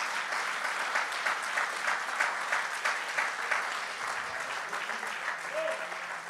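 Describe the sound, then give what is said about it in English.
A church audience claps their hands unto the Lord during a sermon, a dense, sustained patter of many hands clapping at once for several seconds with no voices standing out. “Come on, would you clap your hands unto the Lord?”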